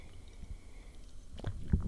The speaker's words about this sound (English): Just give me a sec here. Let's take another ASMR tea sip.